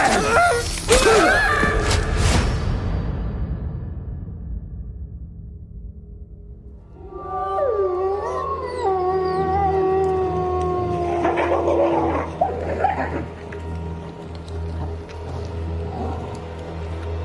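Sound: wolves howling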